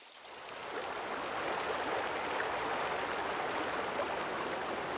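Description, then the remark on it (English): The Lyell Fork, a mountain river fed by meltwater from the Lyell and McClure glaciers, rushes steadily through Lyell Canyon. Its broad, hissing roar of flowing water rises in the first second and then holds constant, with no voices. “So it cascades through the rest of Lyell Canyon.”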